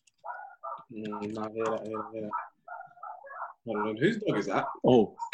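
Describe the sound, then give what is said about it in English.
A dog gives a string of fairly loud whining and yowling vocalizations in two extended bursts, the pitch rising and falling throughout, with a short pause in between. “Whose dog is that?”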